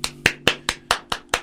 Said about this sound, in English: And tell your entourage they can applaud too. There we go. Well, she's only got no hands. Yeah, I know. She's too busy taking pictures.